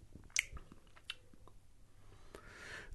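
sipping a beer

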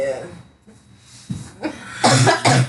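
coughing

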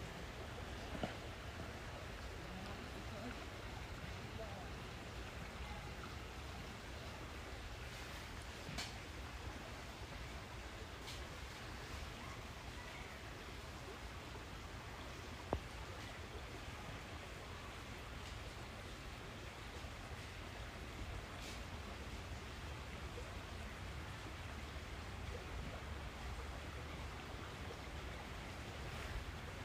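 flowing creek water

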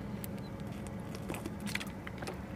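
person drinking water

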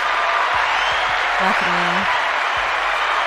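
round of applause

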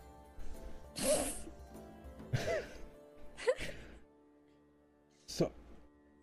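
cough

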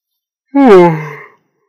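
yawning

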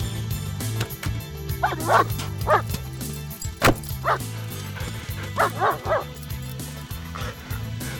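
dog barking and whimpering

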